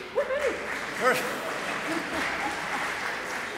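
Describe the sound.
A crowd applauds steadily, a dense, even clatter of clapping throughout, with a few brief voices and whoops rising over it near the start. The audience is applauding the Gen Z members who stood up.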